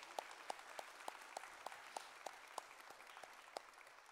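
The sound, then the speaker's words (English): An audience applauds: a soft, steady wash of many hands clapping, with a few sharper claps standing out at a regular beat, about three per second. Nobody speaks. The applause is for the church's new pastor and his family as they depart. “As they're departing, can we give a round of applause to our new pastor and his family?”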